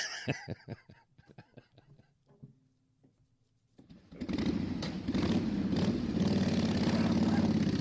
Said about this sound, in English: Hey, a lot of bikes on the road today.